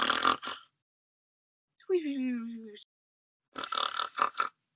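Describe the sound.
A voice imitates the loud snoring of a sleeping character: rough, snorting bursts, with one longer droning snore in the middle that dips lower in pitch, separated by short silences.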